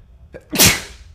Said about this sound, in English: Had a sneeze.